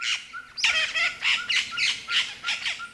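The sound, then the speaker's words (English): A social flycatcher with a red crest, just released after being handled, squawks repeatedly, giving a steady series of harsh, scratchy calls about twice a second with short whistled notes between them, and no one speaking. “So, thank you so much for taking us out today and showing us the birds and the different methods and the social flycatcher, which we got to see.”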